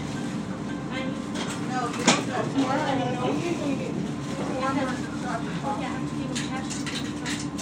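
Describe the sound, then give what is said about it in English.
Steady low rumble of a moving bus cabin, with engine drone and occasional rattles, while several people chat indistinctly throughout. “It's funny she's saying that about the coffee, because as soon as this bus drops me off, I'm going to be walking over to the gas station and getting some very strong coffee,”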